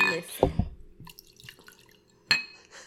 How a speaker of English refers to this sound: Yeah, I'm pouring more. Don't judge me.